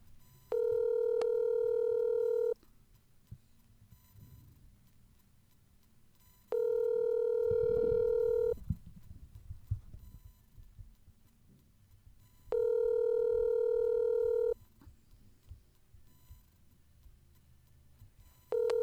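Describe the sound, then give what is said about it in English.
A steady electronic telephone tone sounds in long two-second bursts as a phone call is placed, repeating about every six seconds with quiet gaps between, over a faint low rumble; no one speaks. “So, I'm going to do us all a favor and try to get the void on the phone.”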